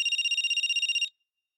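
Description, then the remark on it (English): A telephone rings once at home with a bright, rapidly trilling electronic warble lasting about a second, clear, then cuts off into silence. No one speaks. “when Mylena got home from work, her phone rang, and it was the call she dreaded to answer”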